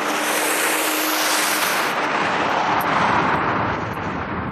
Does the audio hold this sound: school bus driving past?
yes